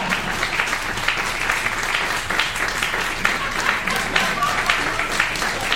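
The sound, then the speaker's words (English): An audience applauding steadily on request, the dense clapping holding at an even, lively level for several seconds with a faint murmur of voices beneath it. “So, we need some edit points, so if you guys could just applaud.”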